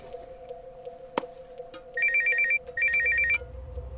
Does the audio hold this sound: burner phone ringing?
yes